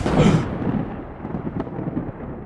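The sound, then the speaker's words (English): A loud, sharp thunderclap bursts out at the start, then trails off into a low, rolling rumble that lingers without fully dying away. No voices are heard. “Zeus learned of Asclepius bringing a mortal back from the dead, and as punishment immediately killed his grandson using a thunderbolt.”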